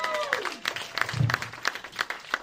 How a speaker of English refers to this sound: One more time. Make it up for both of them, seriously. He's going to do that. He wants the applause so bad.